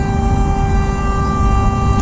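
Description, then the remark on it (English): A car horn blares in one long, steady, loud blast over a constant low rumble of road and engine noise as another car almost hits the driver. No one speaks. “This stupid son of a bitch almost hit me.”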